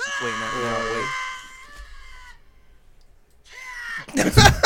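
The video game character Link's death cry: a strained, wavering vocal wail with buzzy harmonics that fades out, then a brief second cry cut off by a loud, harsh noisy burst.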